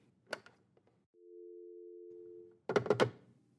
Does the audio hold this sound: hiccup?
no